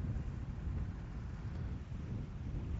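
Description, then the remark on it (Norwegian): Steady wind rushes and buffets outdoors in Kvandal, a continuous low rumble with gusty texture that stays fairly loud and even throughout, with no voices or other distinct sounds. “Ja, nu har vi sett en fin stund här i Kvandal, och vinden tror jag börjar att sparkna, och båten är klar,”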